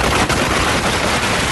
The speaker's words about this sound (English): Those are big firecrackers